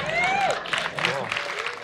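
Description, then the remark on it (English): An audience at a live event breaks into applause as two people hug on stage, a dense crackling wash of clapping with whoops and cheering voices rising over it, loud and steady for the whole moment. “Everybody in the audience applauds.”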